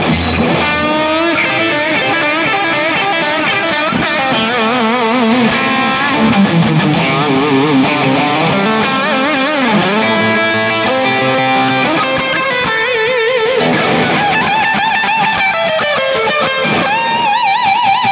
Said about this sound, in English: Yeah, and this one is so brief, so we could do it again and try and listen to this like 17-second solo and see if it is a song.